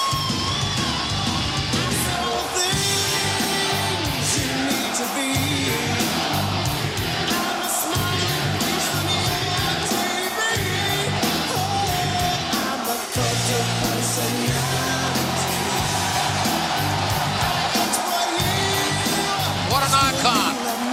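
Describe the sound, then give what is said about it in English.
A pro wrestling crowd cheers loudly and without a break, a dense, sustained roar full of yells and shouts that holds at a steady high level throughout. “I love this crowd. I love the noise.”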